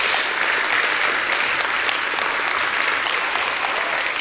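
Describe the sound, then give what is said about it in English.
An audience at a Christmas church service claps steadily and loudly, a dense, continuous wash of applause that holds at the same level for several seconds without any voices breaking through. “Can we just give them a round of applause tonight?”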